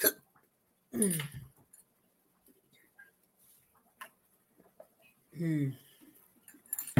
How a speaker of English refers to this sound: It's burping.